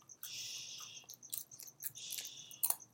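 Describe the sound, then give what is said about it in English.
A child crunching on chips: irregular bursts of crisp, crackly chewing over about three seconds, with a few sharper snaps near the end and no talking. “I just look for the breaks where I need to put, like, elevator music where, like, my child is chomping on chips, like, right now.”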